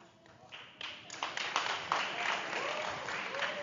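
During a talk, scattered hand claps started by one audience member at the back quickly thicken into light applause from a modest audience, with faint voices murmuring underneath.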